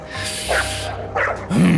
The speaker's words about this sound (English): Shut up, you damn dog.